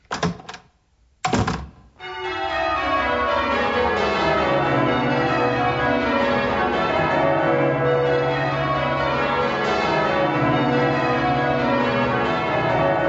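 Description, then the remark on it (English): A couple of quick knocks, then a dense clamour of many bells ringing together in a bell shop, overlapping and sustained at steady loudness, with rich ringing tones layering on top of one another. “Whoops, I got lost. I ended up in a bell shop.”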